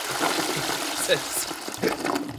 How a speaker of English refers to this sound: Yeah, since we have unlimited flushes, yeah, get rid of it.